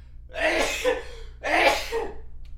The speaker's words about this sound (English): Oh, sneeze.